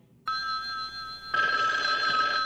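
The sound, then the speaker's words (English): A telephone rings with a steady electronic bell tone, sustained harmonics that grow louder and brighter partway through, with no voices over it, before an answering machine picks up, as in The Rockford Files. “This is Jim Rockford. At the tone, leave your name and message.”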